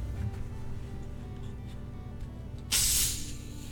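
Ice crackling: faint, sparse crackles and pops over a steady low hum, then a sudden loud fizzing, hissing burst of crackle that fades over the last second. No one speaks.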